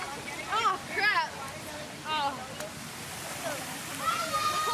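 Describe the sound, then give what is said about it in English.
Steady rushing and splashing of fountain water at Scudder Plaza on a campus in 2008, as boys of about 13 or 14 go swimming in it, with excited voices whooping and calling out over it. “You said you were going to go swimming.”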